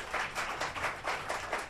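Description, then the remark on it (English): An audience claps for a couple of seconds, producing a steady, fairly quiet patter of bright, crisp hand claps in an even rhythm with no voices over it. “That was clapping him, I presume.”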